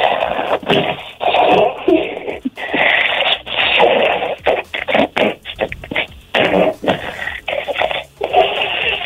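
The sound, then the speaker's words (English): A woman imitates snoring over a tinny phone line as a call-in contest entry, making a string of raspy, wheezing bursts with short gaps between them, loud. “let's hear your best snoring impression.”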